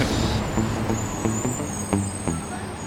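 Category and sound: vehicle, city bus pulling up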